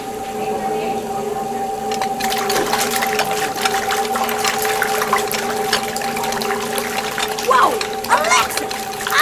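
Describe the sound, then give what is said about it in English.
Running water gushes on after a couple of seconds in a kitchen and keeps up a steady, rushing hiss, with a low constant hum underneath and occasional faint splashes as a pile of dishes is washed. “Time to get these dishes done.”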